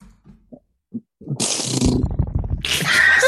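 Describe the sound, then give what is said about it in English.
A voice imitates a drum roll: a few soft mouth clicks, then a fast, rattling trill that builds for about a second before breaking into a loud, hissy burst. “Music, drum roll.”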